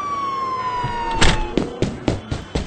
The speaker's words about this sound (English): I'm just turn on the siren here. Boop.